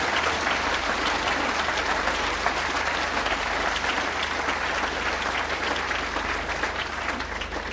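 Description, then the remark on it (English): Sustained applause from an audience after a talk fills the whole stretch, a dense, steady patter of many hands clapping at an even, fairly loud level without letting up. “Now, a little pre-clap.”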